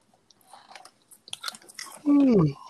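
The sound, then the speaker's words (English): Soft mouth clicks and smacking sounds, then a loud, drawn-out yawn whose voiced tone slides downward in pitch for about half a second before trailing off. “Big boy yawn.”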